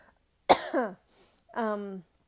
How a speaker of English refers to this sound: I'm sorry, I'm trying so hard not to cough.